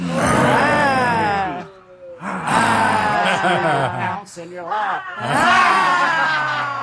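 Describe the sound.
During a laughter yoga session, several voices do the 'lion laughter', letting out long, loud, growling roars in imitation of lions, rising and falling in three drawn-out bursts with brief pauses between them.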